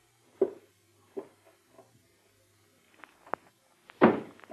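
Muffled footsteps overhead, a few slow, spaced thuds crossing the floor, the last one landing heavier and louder. No one speaks.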